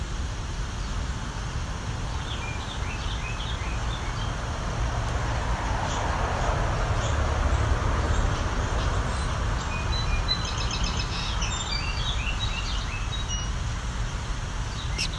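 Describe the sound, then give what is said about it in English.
A Carolina wren sings softly in quiet, scattered bursts of high chirps and short trills, faint and somewhat distant, over a steady low rumble of road or rail traffic. “This is a lot quieter than a Carolina wren usually is.”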